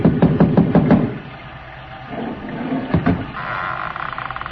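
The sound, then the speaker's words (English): A quick series of about five loud, hard raps on a door made with a bronze idol, followed after a pause by a couple more knocks, with a steady hum rising in the background. “I lifted the bronze idol and rapped on the door with it.”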